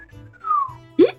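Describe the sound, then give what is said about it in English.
A single short whistle slides downward in pitch, fairly soft, followed by a quick popping burst at the end. “The human whistles impressively at the display of the Pegasus arriving.”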